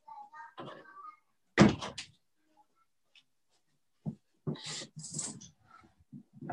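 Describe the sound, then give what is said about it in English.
A door swings shut with a single solid thump as a person closes it, preceded by faint vocal sounds and followed by scattered rustling and handling noises. “Let me close that door so my kids aren't making an appearance.”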